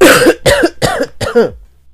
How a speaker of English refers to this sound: I need to cough. I got a dry throat. Sorry about this.